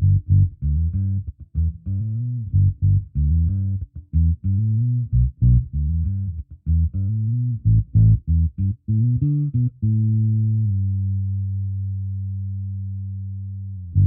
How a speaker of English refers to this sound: And like, this bass, like, I think it sounds way better with the tone rolled off, or like halfway rather than full. It suits the vibe, and yeah, it just inspires you differently, you know, hits differently.